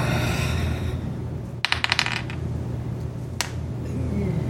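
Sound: dice being rolled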